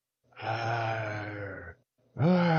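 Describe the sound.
A human voice imitates a liger's roar: a long, low, groaning growl with a steady pitch, then after a brief pause a second loud roar begins, sliding upward.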